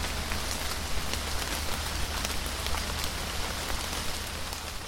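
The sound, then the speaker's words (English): Steady, light, warm and still summer rain falls evenly on the trees of an old temple in Kyoto, Japan, a dense hiss of drops with scattered pattering on a surface, constant in loudness throughout, with no voices. “I think a lot about this one time when I was in Kyoto in Japan, and it was the summer, but it was raining, and it was that kind of like warm, still rain that you feel that's very particular of that season.”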